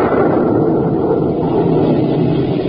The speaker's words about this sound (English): The rumble you hear is not of the volcano. It is thunder.